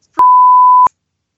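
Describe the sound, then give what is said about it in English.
A single steady censor bleep covering a spoken phrase, a loud pure tone held for roughly two-thirds of a second with sharp clicks at its start and end, standing alone with no talking. “It's getting bleeped out every single time you say it now.”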